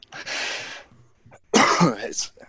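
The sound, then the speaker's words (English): Two harsh, dry coughs, the first a breathy rasp and the second a rougher, more voiced hack, separated by a short pause. “I'm being honest with you, it's more than just a little dry cough.”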